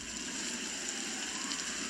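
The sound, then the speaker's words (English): Steady, dense heavy rain at night hisses continuously with no pauses, a broad wash of noise at moderate volume. No voices are present. “He can still hear the heavy rain that night.”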